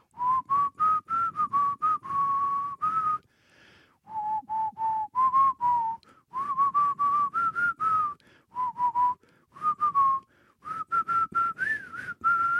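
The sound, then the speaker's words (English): A TV theme tune is whistled as a catchy melody in short phrases separated by brief pauses, fairly loud, with no talking over it. “We can't whistle that. My whistle's gone.”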